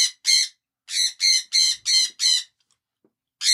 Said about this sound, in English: That screaming was Mr. Habu, my co-host. Are you going to come join? He's having some dinner right now, so he's just doing what birds do. Scream for no reason at all.